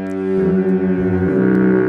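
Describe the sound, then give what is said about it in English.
A deep, loud double foghorn in Duluth blares steadily with a rich, buzzing two-toned chord, sustained for the whole moment without a break and no voices over it. “Duluth double foghorn”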